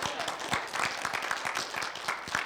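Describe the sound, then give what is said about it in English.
A crowd of people applauds to the Lord, a dense wash of overlapping claps with irregular sharp hand strikes, steady and moderately loud throughout, no voices standing out. “Would you applaud to the Lord if you did?”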